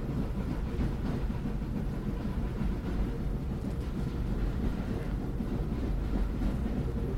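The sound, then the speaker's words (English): A train rolls steadily along the rails, a continuous low rumble with a faint rhythmic churn that holds at an even level throughout, with no voices. “Well, Sheriff Potter's facing his high noon as the train rolls on.”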